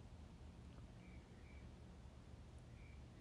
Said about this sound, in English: And the birds are serenading you right now outside with my window open. Chirp, chirp, chirp, chirp, chirp.